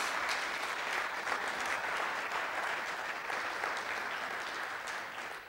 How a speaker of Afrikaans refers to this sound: Ek dink kom ons gee sommer 'n lekker hande klap vir almal.